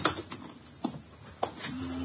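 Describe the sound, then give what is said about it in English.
A refrigerator being opened and searched for letters: a handful of sharp clunks and rattles spaced irregularly, with a low steady hum creeping in near the end and no voices. “Don't pass up that refrigerator.”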